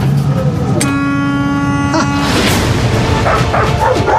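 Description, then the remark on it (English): A person imitates a dog barking: a drawn-out, howl-like call followed by a few rougher, shorter barks, loud against a steady background rumble. “I learned to talk dog.”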